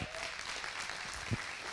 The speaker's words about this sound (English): Speaking on God's holiness is Pastor Anthony Davis. Would you please welcome him with a round of applause?